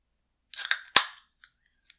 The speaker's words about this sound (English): Oh man, it's got some fizz to it. You hear that sound? It's got some very audible bubbles coming out of this can.